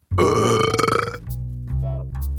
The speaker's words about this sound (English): … just burped slowly.